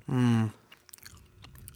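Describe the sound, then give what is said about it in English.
A short hummed vocal sound gives way to soft, irregular, wet smacking clicks of someone chewing gum, quiet and sparse over about a second. “I'm just going to chew gum all just chew gum.”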